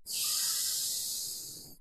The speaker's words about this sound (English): And so the fundamental Boabom breathing, the basic breathing that we use, works like this. We put our tongue against our palate behind our top teeth, and we inhale through our nose like this.